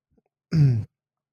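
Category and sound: human body sound, cough and throat clearing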